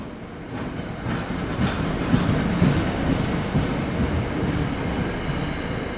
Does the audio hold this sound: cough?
no